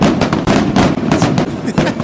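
A rapid, loud barrage of fireworks exploding, bursts cracking and popping in quick succession over a continuous rumbling background, with the blasts overlapping one another.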